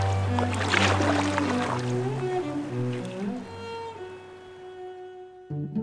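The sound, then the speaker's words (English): Paddles splash the water of a river in quick bursts while boats are rowed, the splashing loudest early on, over a steady low droning hum that carries on after the splashes fade. “In order to ward off fish from eating the beloved patriot's body, they beat drums, splashed the water with their paddles, and threw lumps of rice into the river.”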